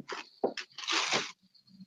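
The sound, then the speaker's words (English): Someone sips coffee: a few short, wet, crackly bursts give way to a longer hissing slurp, followed by a faint low rumble and quiet. “As he takes a sip of his coffee.”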